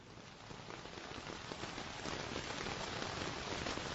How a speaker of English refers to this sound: Play random. Rain on tent.